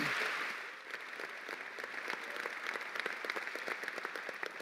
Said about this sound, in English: I'd like for us one more time to show our appreciation by giving applause to God, but also to these two servants of the Lord. So will you applaud them one more time, please?